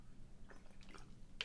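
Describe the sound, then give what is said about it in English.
Someone takes a quiet drink of water: a few soft, wet sipping and swallowing sounds spread over a second or so, with no talking. “Drink of water, hold on.”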